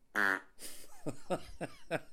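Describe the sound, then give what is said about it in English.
A voice imitates a fart let out while urinating at a urinal: one loud, buzzy blast, a short hiss, then four quick sputtering pops at a steady pace, with no talking. “I'm just trying to take a whiz, and then all of a sudden I fucking fart.”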